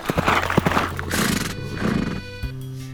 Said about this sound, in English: One day, while Pierre Leblanc was away in the forest chopping wood for the fire, a stranger came galloping down the road upon a horse.